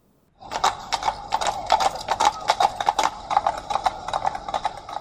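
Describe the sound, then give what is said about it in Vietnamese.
A white horse with a white harness, ridden by a man dressed all in white, gallops past in a quick, steady rhythm of sharp clip-clop hits, loud, beginning suddenly after a brief silence and continuing throughout with no voices. “Một người đàn ông bí ẩn, mặc đồ toàn màu trắng, cưỡi một con ngựa trắng, có đai ngựa màu trắng vụt qua.”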